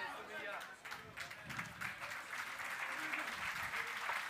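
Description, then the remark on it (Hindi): An audience claps steadily throughout, a dense, even patter of many hands that stays at a fairly constant level without any voices rising above it. “ताली बजाने का मतलब है आपको बहुत अच्छा लगा, तो अब इस पे अमल करो।”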